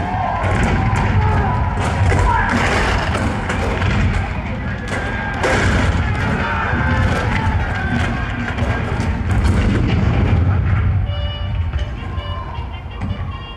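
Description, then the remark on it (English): Loud, continuous cannon fire sound effect marking the bombardment of Fort Sumter on April 12, 1861, the start of the American Civil War, with repeated booms rolling over a dense battlefield din for the whole stretch and faint indistinct shouting mixed in. “The cannon spoke for war, bitter, violent, and devastating.”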